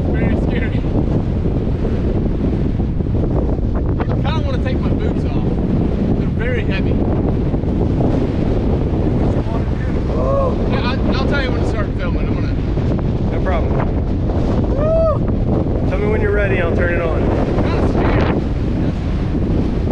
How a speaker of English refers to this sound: Badwater Basin in Death Valley. 58 mile per hour wind. What could go wrong? What could go wrong, right? It's really windy.